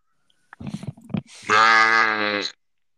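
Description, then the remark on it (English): A brief mumble of voice, then a person lets out a loud, drawn-out, wavering 'baaa', mimicking a sheep's bleat like a Minecraft sheep for about a second. “Why do you sound like a Minecraft sheep?”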